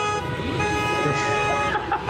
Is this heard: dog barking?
no